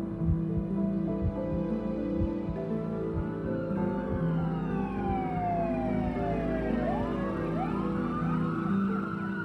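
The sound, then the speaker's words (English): Several emergency vehicle sirens of fire and paramedic crews arriving at a car crash wail and sweep up and down in pitch, growing louder as they approach over a steady low engine rumble, with overlapping tones crossing each other. “I watch and wait as the emergency vehicles arrive, as firemen and paramedics check on Noah's parents and the other driver.”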